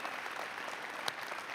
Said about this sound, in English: So I want us to give a really loud Eagle shout out and round of applause for Clint. We love you. We're with you, brother.